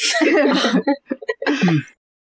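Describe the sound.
A loud sneeze with a breathy, voiced rush, followed by a few short sputtering sounds and another strained vocal exhale, all over about two seconds.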